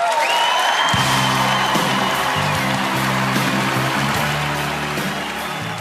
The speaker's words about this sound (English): The team staff huddled around Hamlin on stage as the crowd gave them a standing ovation.